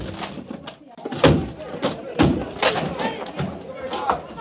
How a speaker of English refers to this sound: All right, men, break down the door.